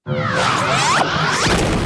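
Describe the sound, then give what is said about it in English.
A sci-fi plasma cannon effect made for Super Bumblebee: a dense, loud burst layered with a reversed ricochet and electronic tones sweeping up and down, sustained at full level for about two seconds with no speech. “And there you can hear a ricochet that has been reversed, as well as some electronic ascending and descending sounds.”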